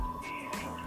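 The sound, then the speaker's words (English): A sustained electronic sonar ping in a video game rings steadily over a muffled underwater ambience, with soft watery whooshes swelling twice in the background; no one speaks. “I hear sonar.”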